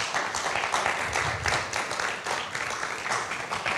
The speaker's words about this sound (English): So would you give David a big round of applause as he joins me?